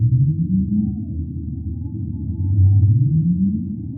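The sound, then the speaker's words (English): Low, rising whale calls sweep upward through a dense rumble of underwater noise, two long moans a couple of seconds apart, with faint higher tonal traces above, recorded beneath the surface by an acoustic buoy in and around New York Harbor or out on the shelf. “we have acoustic buoys that are situated in and around New York Harbor and out on the shelf that can actually listen to the calls of whales as they are either feeding in the area or passing through the area.”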